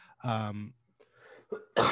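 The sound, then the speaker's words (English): A single sneeze: a loud, voiced, rising intake followed by a brief pause and a sharp, hissing burst of breath at the end. No one speaks. “bless you. Thank you.”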